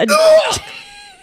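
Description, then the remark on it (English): A voice imitates a fly slurping up gooey donuts: a wet, breathy slurp burst followed by a thin, wavering tonal squeal that trails off, all in about a second. “It's like slurp.”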